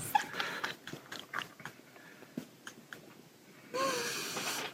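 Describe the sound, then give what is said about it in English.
A dog named Ed chews food with a series of wet, irregular bites and crunches, a snort or two, then a gulping swallow of the whole thing and some heavier breathing at the end. “Like he just put the whole thing in and swallowed it.”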